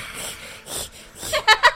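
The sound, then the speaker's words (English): A person imitates snoring: a few raspy, breathy inhales and exhales, then two or three louder, sharper snorting bursts with a wheezy, whistling edge at the end. “And how do you snore?”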